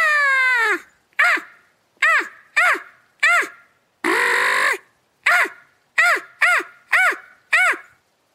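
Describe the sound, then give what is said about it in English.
A person imitates a crow with their mouth, giving a long drawn-out caw followed by a string of short, sharp caws in quick bursts, with one harsher, raspy caw midway. Loud, with no other sounds. “And so I learned how to do a crow call with just my mouth, not a crow call.”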